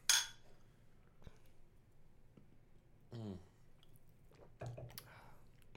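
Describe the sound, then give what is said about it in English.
A gluten-free beer is cracked open with a short sharp hiss, followed by quiet sips and swallowing, a few small clicks and a brief satisfied hum, all fairly soft. “Well, we got to open these before we get to the drops, so let me open mine, and we will describe this flavor of this glutenless beer.”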